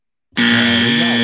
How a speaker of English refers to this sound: Anyways, we got the buzzer.